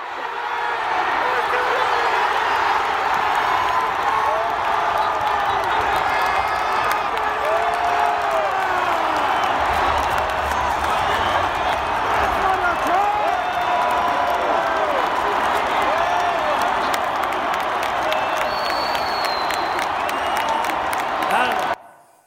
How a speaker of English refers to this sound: That's why we want to play at home, people. We got thousands standing in the stands, cheering us on. You know, believing that what we've just done is super important.